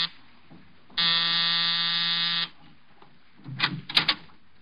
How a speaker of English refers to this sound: A half hour after I left George Victor, I was punching the buzzer to Saxon's apartment.